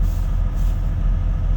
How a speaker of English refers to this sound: So, I'm sitting here in the truck. The high idle won't work, so I have to keep hitting that throttle so it won't shut off.